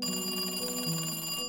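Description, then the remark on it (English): A telephone rings with a steady, trilling electronic bell tone, fairly loud, lasting just over a second before cutting off abruptly. No voices are heard. “2 years passed before the Durians got another call about Vicky's death, but it wasn't from Alkire.”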